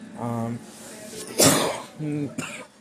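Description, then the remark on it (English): A single loud cough bursts out in the middle, bracketed by short voiced hums or throat sounds before and after it, with no actual words spoken. “After 30 minutes of me coughing and talking about the NFL”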